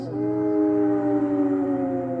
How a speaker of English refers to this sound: When nightfall came, I heard distant howling in the woods.